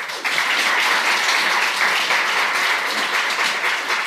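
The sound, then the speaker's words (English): A crowd bursts into steady applause, a dense wash of many hands clapping at once, sustained and fairly loud for a few seconds without any voices on top. “But give these guys a round of applause.”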